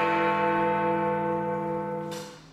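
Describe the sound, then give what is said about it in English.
A single deep toll of Big Ben's clock bell, now set to Greenwich Mean Time, rings out, its rich humming overtones sustaining and then slowly fading away, with no voices. “Big Ben has now been set to Greenwich Mean Time.”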